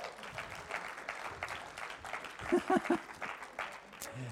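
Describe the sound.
A room full of people applauding together, a dense steady patter of many hands clapping at moderate volume with a few brief voices and cheers mixed in.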